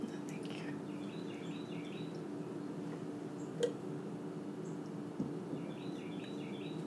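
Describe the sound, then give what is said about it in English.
Faint birdsong with short repeated chirping phrases near the start and again near the end, over a steady low background rumble and a single soft tap midway. “Maybe you can't hear the birds. It's just that. It's just like the birds singing.”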